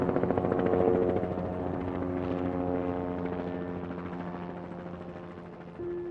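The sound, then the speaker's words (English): Two helicopters pass overhead in formation at a memorial for a St. Paul police officer who died in the line of duty, their rotors thumping in a steady rapid beat over a droning engine hum. The sound is loud at first, then fades gradually. No one speaks. “And then two helicopters flew overhead in a mission man formation.”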